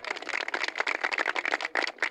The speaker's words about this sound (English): The golf clap comes in, and I'm glad that my producer agrees with me on that.